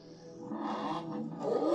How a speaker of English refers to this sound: Because it really sounds like a rotary to me. The 350. I guess that's what it is. It's like really fast revving and like raspy.